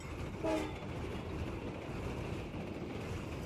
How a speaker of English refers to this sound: What do you say we get this train rolling? All aboard!